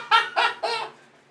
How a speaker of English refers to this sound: God, dude. That sounds like birds fighting.